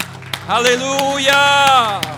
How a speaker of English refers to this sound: Everybody said amen. Now give him a hand clap and shout of praise. One more time.